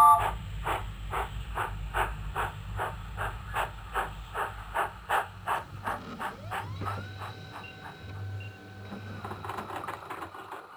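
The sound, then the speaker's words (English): A steam train chugs away in a fast, steady rhythm of puffs over a low rumble and hiss, the beats loosening as a sustained tone rises. No one speaks. “Let's get back on the train.”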